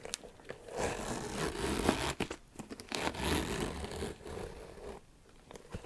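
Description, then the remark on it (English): A handbag zipper with a leather tab, on a mostly red Kate Spade bag, rasps open and closed in several quick pulls, each a bright scratchy burst with brief pauses between strokes, and no voices present. “very smooth, nice sounding, sturdy feeling zipper.”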